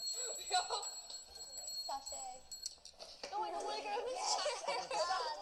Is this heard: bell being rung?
yes